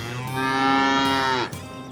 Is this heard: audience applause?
no